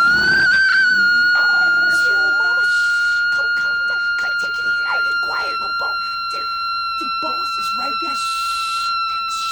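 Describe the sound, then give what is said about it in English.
A woman's long, drawn-out scream on the set of a monster movie, held on one steady high pitch for the whole stretch, loud and unbroken, while people talk over it in the foreground. “And we see this woman screaming, and she's holding the scream forever.”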